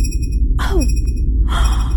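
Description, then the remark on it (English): A high electronic signal tone holds steady, sonar-like, over a low rumble, broken by a couple of sweeping whooshes and a short descending chirp. No one speaks. “That beeping's louder.”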